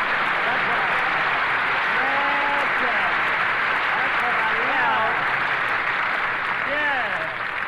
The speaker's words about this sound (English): Okay, folks, the show may be flopping, but now Harris is here to start things popping, so shower me with that sun-kissed applause.